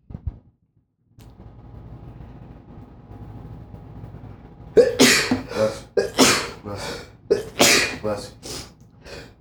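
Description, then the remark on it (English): After a quiet stretch with a low background hum, someone sneezes about four times in quick succession, each sneeze loud and sharp, with brief breaths in between. “Yeah, at least that was like what, 4 sneezes.”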